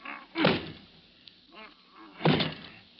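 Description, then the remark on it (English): A stuck closet door is shoved and forced, giving two heavy, rattling thumps about two seconds apart with a softer bump in between, otherwise quiet. “I'm going to try this door again.”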